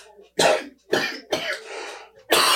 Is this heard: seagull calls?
no